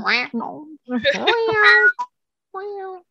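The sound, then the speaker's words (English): A person mimics a cat with a few drawn-out, wavering meows in quick succession, fairly loud, followed after a short pause by one more softer meow. “Do you not meow when you see a cat on the street?”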